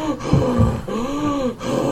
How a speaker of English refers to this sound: See? I'm breathing.